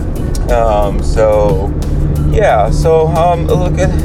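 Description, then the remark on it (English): A truck engine, running a little rougher and louder than usual, drones loudly and steadily from inside the cab while the truck is driven, a heavy low rumble running the whole time beneath a person talking. “So, I was a little worried because, like, my truck started running a little bit rougher. It's a little bit louder, which I feel like you can kind of hear right now.”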